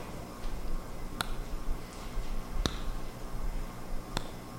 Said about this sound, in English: You're not fooling me. Yeah. You're not fooling me with that clock going.